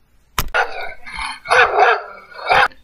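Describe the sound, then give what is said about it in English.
A dog barks, a sharp yap followed by a quick run of three or four loud, rough barks with short gaps between them and no voices. “Is your little pup getting dirty dog prints all over the house?”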